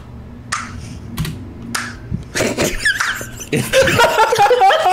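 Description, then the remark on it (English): A slow clap: three sharp, evenly spaced hand claps about half a second apart, followed by a louder, busier burst of noisy commotion. “Slow clap. That was a slow clap.”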